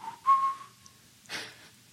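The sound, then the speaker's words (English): A rock climber whistles while climbing El Capitan, a clear, steady note that rises slightly at first and then holds before fading, followed by a brief breathy rush of noise. The whistling is moderately loud, with no talking. “There's video of him climbing El Cap, breaking this record, and he is whistling.”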